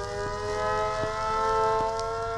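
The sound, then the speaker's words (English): A steady, droning alarm holds several layered tones throughout, while a handful of short impact hits land at uneven intervals underneath it. No one speaks. “Cue various alarms and impact sound effects.”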